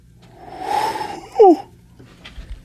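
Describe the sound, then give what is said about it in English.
A person imitates an owl: a long, breathy inhale-like rush, then one short, loud hoot that slides downward in pitch, followed by quiet. “An owl sounds a little bit something like,”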